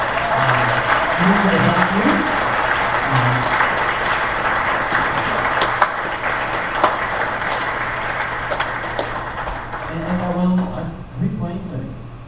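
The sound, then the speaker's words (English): A crowd applauds to thank the kids' ministry leaders, in a dense, steady wash of clapping that holds loud for about twelve seconds, with a few low voiced shouts or whoops rising over it near the start and end. “So I just want to publicly, everyone just round of applause, I just want to thank all my leaders.”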